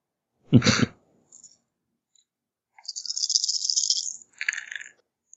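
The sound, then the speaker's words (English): A dull knock, then a pause before a bright, sustained clatter of dice rattling and tumbling for over a second, ending in a short second rattle. No one speaks. “Oh, good. More dice.”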